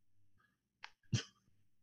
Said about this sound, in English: No, I was sneezing.